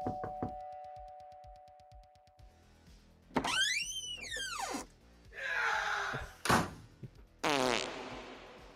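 A door creaks open with a long, rising and falling squeal, followed by several loud, sharp bangs as it slams shut, amid other scattered clunks and rushing noises; no one speaks.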